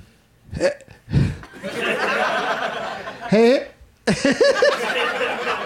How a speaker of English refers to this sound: this is going to be interesting to see how this plays out because I've got hiccups. So but I'm going to try to soldier through and see what happens.